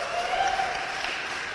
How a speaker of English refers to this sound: Hey, if you're tired of paying for a military here in 1814 that isn't even here protecting us, let's hear some applause.